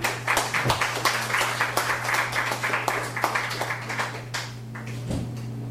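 A crowd claps steadily for several seconds, a dense patter of many hands at moderate loudness that thins out toward the end, with a low steady hum underneath.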